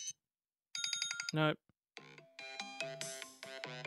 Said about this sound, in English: Oh, that's a ringtone.